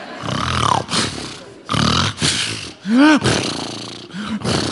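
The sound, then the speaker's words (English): A voice imitates a family member's loud snoring: a series of harsh, rasping snorts in separate bursts, one with a groaning tone that rises and falls, and no words spoken. “There's somebody in my family, I'm not going to mention their names, but when they snore, they almost suck the blanket right into their face.”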